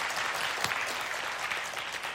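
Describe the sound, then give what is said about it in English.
An audience claps steadily in answer to the pastor asking who went Black Friday shopping, a dense wash of many overlapping hand claps at a fairly even loudness with no voices standing out above it. “How many of you went Black Friday shopping? Will you clap?”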